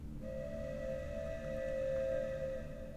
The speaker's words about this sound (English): Somewhere off in the distance, barely audible, is the sound of a train whistle.